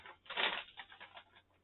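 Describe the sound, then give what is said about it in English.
A paper baggie crinkles and rustles as it is opened to reveal a Flaming Hot Mountain Dew, with one loud burst of crackling followed by several softer, scattered rustles. No one speaks. “Speaking of hot, guess what's under this? Plastic baggie. That is made conveniently out of paper.”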